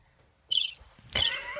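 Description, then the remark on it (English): A broken electronic cricket toy chirps in a short, bright burst, stops briefly, then starts again after a soft click and keeps trilling steadily to the end. It is fairly loud, with no talking. “That's our broken cricket, by the way. I think you have to press it again. Oh, it just keeps going.”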